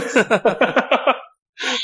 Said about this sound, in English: I think that's I'm not editing that out. I've sneezed on air.